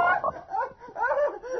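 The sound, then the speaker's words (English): A giant frog croaks in a deep, warbling, throaty call that rises and falls in two long swells with a brief dip between them, heard alone without any talking. “It's only a frog”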